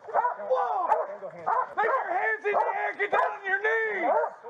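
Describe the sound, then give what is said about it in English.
A police dog barks loudly and relentlessly, a rapid string of sharp, excited barks and yelps with barely a pause over a few seconds, as Louisville Metro Police officers order a man to walk back, recorded on body camera. “Walk straight back or I'll send this dog on you.”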